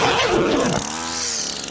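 A loud, buzzing two-stroke motor revs from a rough sputter into a steady high whine, like a weed whacker running at full throttle, played as a sound effect, with no one talking over it.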